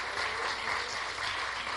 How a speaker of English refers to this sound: Come on and give God a hand clap of praise.